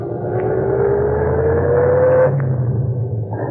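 A radio taxi's engine hums steadily from inside the vehicle, a low continuous rumble with a gradually rising tone as it drives north on the Post Road, with no voices present.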